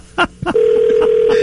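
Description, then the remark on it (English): A telephone rings with a steady, continuous electronic tone that starts abruptly after two short clicks or knocks, loud, with no one talking. “Oh, let the phone ring.”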